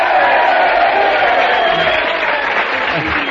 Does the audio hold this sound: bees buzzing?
no